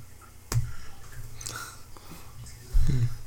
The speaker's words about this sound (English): you're snoring baby. he's out cold.